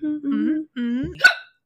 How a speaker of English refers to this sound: A little burp friend came out, too. I'm so sorry.